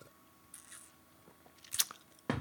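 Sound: sipping a drink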